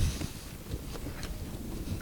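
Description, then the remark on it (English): Someone eating a cheese and leek sausage roll: a few soft, irregular chewing and biting sounds over a steady, rumbling wind noise, with no talking. “I'm just gonna eat it quite ostentatiously and make yum yum sounds.”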